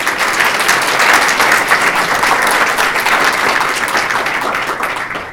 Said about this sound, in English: Can we give Mr. Penderhughes a round of applause as he comes up?